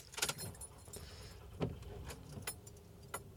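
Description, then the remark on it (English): Keys jangle in a few bright, metallic bursts while a van's engine starts and rumbles steadily underneath, inside the van, with no voices. “Car is started. We're sitting here in the van”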